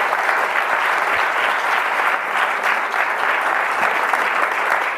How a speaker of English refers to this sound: Let's give a round of applause to all of those commitments that were made today.